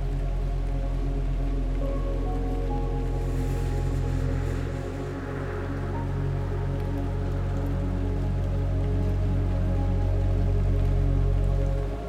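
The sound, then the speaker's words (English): Steady patter of raindrops splashing onto a pool surface, a dense continuous spatter of small splats, with no voices. “Listening, you notice that each water droplet sounds its own chorus with a gentle splat when it meets the surface of the pool.”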